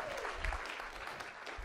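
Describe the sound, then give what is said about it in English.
A crowd claps steadily for a singer after her performance, the applause dense and sustained at moderate volume throughout, with a faint murmur of voices mixed underneath. “deserves a round of applause for that, right?”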